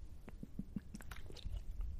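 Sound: swig of water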